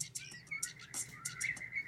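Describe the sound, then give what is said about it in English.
Rapid, repeated bird chirps and tweets ring out clearly over a steady low hum and a thin sustained tone, as if woven into a music track; no one speaks. “Can you identify the birds that are in this?”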